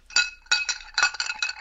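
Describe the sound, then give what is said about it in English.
A plain Collins drinking glass clinks and rattles in a quick, uneven series of about six bright strikes, each leaving a thin high ringing tone, fairly loud with no voices. “This is just a glass.”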